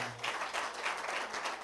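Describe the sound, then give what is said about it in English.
A crowd claps for Jesus, steadily for nearly two seconds, a dense, continuous patter of many hands with no single beat standing out, fairly loud throughout. “There's some women, clap for Jesus.”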